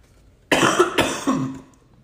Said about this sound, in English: Apologies, kind of have a cough.